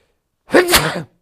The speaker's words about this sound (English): Excuse me. That's just a sneeze.